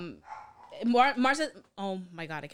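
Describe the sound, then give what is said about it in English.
A dog barks and yelps a few times in short loud bursts with a brief pause between them, with no one talking over it. “I'm going to go quiet the dog.”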